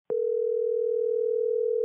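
A steady, unbroken telephone dial tone hums at even volume after a sudden start, holding a single clear pitch with a faint upper tone and no voices.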